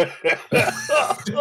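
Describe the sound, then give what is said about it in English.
A burst of several harsh coughs from a person in quick succession, loud and raspy, with no talking over them. “I started coughing and my cat jumped out of my lap.”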